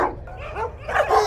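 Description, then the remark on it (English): Several husky sled dogs bark and yip over one another in a busy, overlapping chorus as they are halted on the trail to Skagway, with a few higher whiny yelps mixed in, steady and moderately loud throughout. “Ho, you huskies! Ho!”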